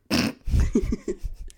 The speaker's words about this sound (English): You want to know what the worst thing about coughing so much is? Every single time I cough, I fart.